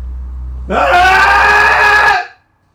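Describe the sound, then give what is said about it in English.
Several people scream together after a three count in a single loud, sustained cathartic cry lasting about a second and a half, raw, before it cuts off sharply into quiet. “We'll keep this one short with a cathartic scream and a three count, everybody.”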